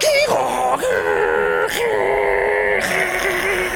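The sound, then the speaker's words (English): A voice imitates a dial-up modem's handshake: a loud, continuous strained warble with shifting whiny tones, broken up by three short bursts of hissing static over about four seconds. “She opens her mouth as she looks at you, and you just hear the terrifying noise of a dial-up modem.”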